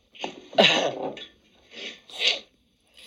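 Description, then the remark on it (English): Breathy sniffling right in front of the microphone by someone who can't breathe through their nose: a longer wet snort followed by several shorter sharp nasal inhales, with brief pauses between them and no talking. “It's good that you fucking sniffle right in front of the mic”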